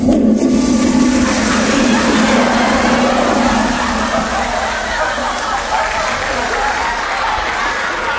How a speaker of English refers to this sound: Toilet flushing joke.